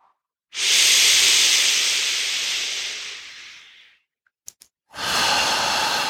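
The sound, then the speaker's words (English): A long, forceful breath pushed out as a loud breathy hiss during a breathing practice, pushing all the air out, fading over about three seconds, followed by a couple of faint clicks and then a second strong exhale starting. “He's just doing the tiniest of habits, the tiniest of routines, pushing all the air out.”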